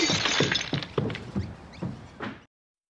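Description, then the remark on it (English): A casserole dish smashes on carpet: a dull crash with breaking, then several scattered thuds and clatters over about two seconds before it stops abruptly. “So that was the casserole. On carpet.”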